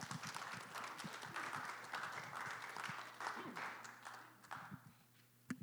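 A crowd applauds steadily for several seconds, a dense wash of clapping with scattered louder claps, fading slightly toward the end, with a faint low hum beneath.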